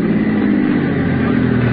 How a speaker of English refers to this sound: Bus just pulled in. Yeah, it's one of the regular stops here.